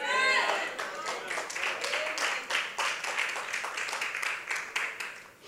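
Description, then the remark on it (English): Scattered, half-hearted clapping from a church audience during a sermon, uneven and sparse, after a brief voice at the start; the claps keep going at a moderate level for several seconds. “By your half claps, I know I freaked you out.”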